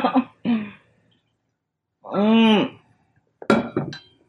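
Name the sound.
glass clinking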